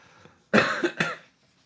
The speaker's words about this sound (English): Sorry, I'm getting over, I guess, a cold. Yeah, or a no, you're good. All of my coughs, I apologize.